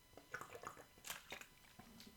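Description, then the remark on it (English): Quiet sipping from a drink: a few short wet slurps and mouth clicks in an uneven rhythm, then a soft swallow, with no talking. “Hold on, let me just have a sip here.”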